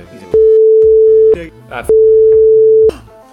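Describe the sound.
Two loud, steady electronic beeps at one unwavering mid pitch, each lasting about a second with a short gap between, like a busy signal, over faint background voices.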